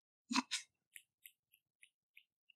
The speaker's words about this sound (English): Thank you, I appreciate your finger snapping.